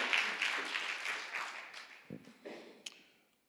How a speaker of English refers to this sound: We have a great multimedia team who does great things on a daily basis. So if you could give them a round of applause.